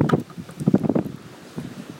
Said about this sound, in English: Oh, is it going to get windy again? Oh, seems like it.